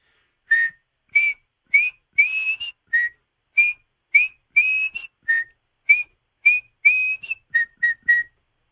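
One person whistles loudly in a quick string of about fifteen short, piercing bursts, mimicking the shrill whistling of New York Rangers fans at the Rock in Game 1 against the Devils. There is no crowd noise or talking.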